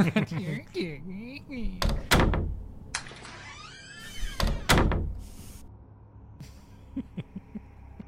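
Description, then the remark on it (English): A door is opened and shut several times, with a few loud thumps and clatters in pairs, while people talk and laugh in the background. “stop playing with the door.”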